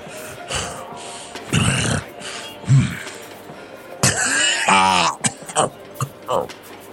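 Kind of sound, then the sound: human body sound, coughing and throat clearing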